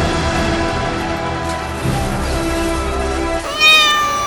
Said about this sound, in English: Yes, the cat! It's Teebs the cat!